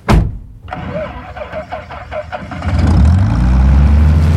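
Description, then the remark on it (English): A sharp thump, then a starter cranks in rapid rhythmic pulses before the engine of Bessie, a freshly tuned-up small propeller plane at its hangar, catches and settles into a loud, steady low drone. “Let's head out to the hangar. Ah, there she is, my trusty plane, Bessie.”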